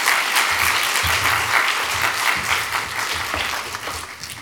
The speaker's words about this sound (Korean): 먼 길 오셨는데 우리 한번 크게 박수함으로 환영하면 좋겠습니다.